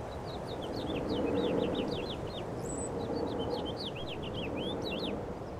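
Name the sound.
finches chirping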